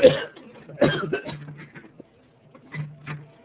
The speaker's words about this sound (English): I feel like we're doing the show in a tuberculosis ward. Whoever's coughing, please turn off your microphone if you're not participating in the chat.